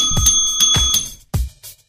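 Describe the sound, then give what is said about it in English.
A bell is struck several times in quick, uneven succession, its bright metallic ring hanging between hits along with dull thumps from the striking, all loud. “And when you agree that this would take a perfect 10 and make them a 5, I want you to ring the bell.”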